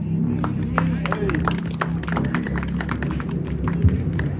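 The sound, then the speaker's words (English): A crowd applauds steadily, many hands clapping in an irregular, overlapping patter that runs the whole time over a low background murmur of voices. “And can I get a clap for him again?”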